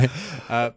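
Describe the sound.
A short, throaty cough, with an abrupt burst at the start and a second voiced hack about half a second later.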